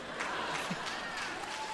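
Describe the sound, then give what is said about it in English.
An audience applauds, a steady wash of many hands clapping with a dense, crackling texture that holds evenly through the short stretch, with no voices over it. “Stay, please, hold the applause.”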